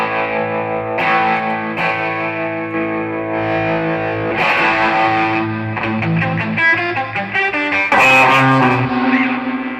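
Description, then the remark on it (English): An electric guitar played through an overdrive distortion pedal, thick and saturated, with sustained chords and bright picked notes ringing loudly and continuously, no voices. “That is like, I use that for a gain, obviously. It's like just a little more like saturated”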